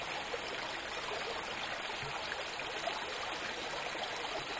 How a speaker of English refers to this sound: Oh, that's pretty. Well, it's rolling down that log. And it's a little babbling brook.